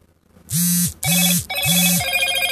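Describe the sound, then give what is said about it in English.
A phone rings loudly, three quick electronic trills in a steady rhythm, bright and buzzy over a low hum, with no one speaking. “Right when I pick her up, my phone starts doing that with...”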